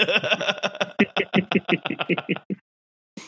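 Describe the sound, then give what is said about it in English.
A quick, steady series of about fifteen sharp knocks, imitating people knocking on a car window, runs for a couple of seconds, then stops briefly before one last knock. “there was a couple times where a couple of the guys came over there while I was trying to nap and were knocking on the window trying to open the door handles, and they're like, unlock the doors.”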